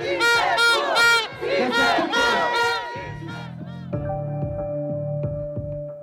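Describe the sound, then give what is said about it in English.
A loud crowd in Honduras, celebrating in the streets after Xiomara Castro won the election, cheers and shouts in overlapping voices, then gives way to steady horn-like tones and a rhythmic beat as the celebration continues. “And after she won, crowds took to the streets to celebrate.”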